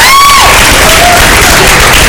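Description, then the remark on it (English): A loud crowd at Redemption Church claps and cheers continuously as interns make their way forward, a dense wash of applause with whoops and a rising shout near the start. “You gotta keep clapping until they get here.”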